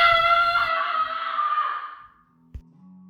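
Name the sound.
man screaming in fright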